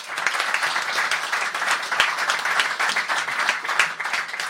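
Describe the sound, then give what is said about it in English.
An audience gives a round of applause for a guest being introduced, a dense wash of many hands clapping at once with a few sharper individual claps standing out, sustained at an even, fairly loud level throughout. “So a round of applause for Steve.”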